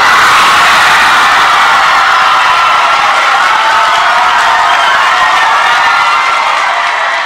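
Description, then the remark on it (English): A large audience erupts in loud, sustained cheering and shouting at the announcement that the Albert Einstein College of Medicine will be tuition free, a dense wall of voices with whoops that holds steady for several seconds before easing slightly at the end. “Now, the only people in that audience that didn't cheer are the ones that are about to graduate in May.”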